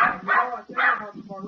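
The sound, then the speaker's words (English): A dog barks, two loud, drawn-out barks in quick succession, followed by softer, lower vocal sounds trailing off. “Just give me a second, I'll get my dog right.”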